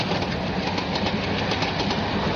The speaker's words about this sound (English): Lost in sleep, the sound of speeding train coming from opposite direction rang in my ears that eventually took my sleep away.